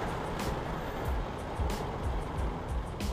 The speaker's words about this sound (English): it's probably mid-March, and backing out of my driveway, doing a driving podcast now. Raining,